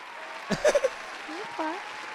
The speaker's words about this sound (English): Congratulations to you for having all your kids by one man. Congratulations. Okay. That deserves a clap. Give her a clap. Okay. Give her a clap. Give her a clap for that.